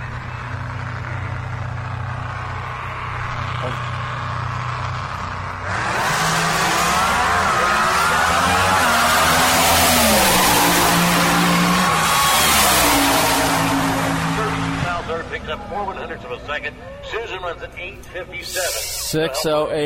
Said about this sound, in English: That's flying. That's a fast car.